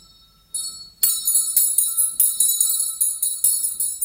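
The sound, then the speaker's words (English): An old school hand bell, the original 1933 bell of Waringstown Primary School, rings out loud, swung in a quick steady rhythm of bright metallic clangs that overlap and ring on, after a brief softer jingle at the start. “This is the school bell, the original school bell from Waringstown Primary School in 1933.”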